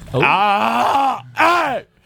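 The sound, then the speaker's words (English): A voice imitates a horse demon: a long, strained, wavering groan that rises and falls, then a short pause and a second, shorter growling moan with a bending pitch. “give me your best horse demon.”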